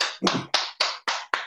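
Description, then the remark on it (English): Short burst of audience hand clapping, about six sharp claps in a quick steady rhythm, each ringing out briefly, fairly loud, with no talking over it. “Y'all clap up quick before I get to Yolanda.”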